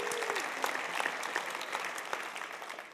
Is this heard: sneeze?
no